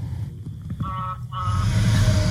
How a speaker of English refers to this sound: Semi drove by.